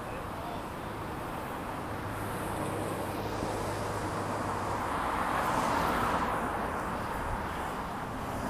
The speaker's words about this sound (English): So a little bit of traffic.